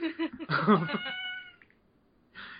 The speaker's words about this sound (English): Oh, okay. Is that a cat? The cat likes Nasawa's eyeliner, I guess? There are cats outside my window.